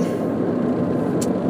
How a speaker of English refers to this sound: Oh, there's traffic. No! I know there's usually traffic, but not at this point. It must be an accident.